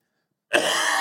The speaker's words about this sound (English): Okay, I'm officially tired of coughing. I know, isn't it? It's 2 weeks. Oh, really? And it won't go away.